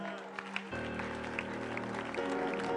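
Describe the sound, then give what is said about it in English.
A church audience claps steadily as a clap offering to the Lord, in a dense, continuous patter, mixed with sustained organ-like chords that shift pitch partway through. “Are you appreciating the Lord with a wonderful clap offering?”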